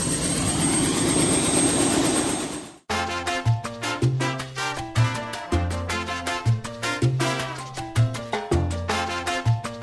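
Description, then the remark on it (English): A helicopter carrying passengers: loud, steady rotor roar with a high turbine whine fills the first few seconds, then cuts off abruptly as upbeat music with a pulsing bass line takes over. “So we're going to see how that works the moment we get off the helicopter.”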